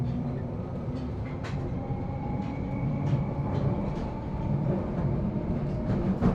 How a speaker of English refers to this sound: It's the night tube. The sexy night tube.